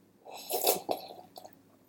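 A wet slurping sip from a sparkling watermelon fake margarita, a couple of quick bursts followed by a softer gulp, with no one talking.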